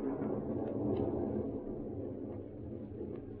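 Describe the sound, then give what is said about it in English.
A low, continuous rumble rolls steadily, deep and muffled with no sharp cracks, like thunder building before a storm. No voices are heard. “That storm's going to break any minute now.”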